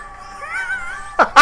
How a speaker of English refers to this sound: This meme came out that was the Game of Thrones opening sung by a cat. This is what I want to put at the end of the show.